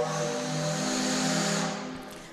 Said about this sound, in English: There's a steam whistle. That's our 1130 whistle.